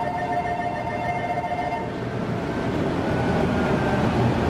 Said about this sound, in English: The steel plant floor is hot, it's loud, and constantly in motion.